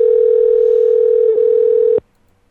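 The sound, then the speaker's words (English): A steady Google Voice telephone dial tone hums loudly and evenly for about two seconds while a call connects, with a tiny hiccup partway through, then cuts off abruptly into near silence. “Tone and Google Voice will try to connect you.”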